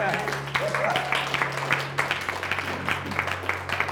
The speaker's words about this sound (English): And following that, we're going to baptize, I believe, 5 young people in this room. You can get excited and clap if you want.